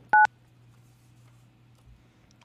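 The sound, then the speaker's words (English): A single short, loud touch-tone dialing beep sounds right at the start as a phone call is dialed out, followed by quiet with only a low, steady hum underneath and no voices. “No, we're literally going to dial her out.”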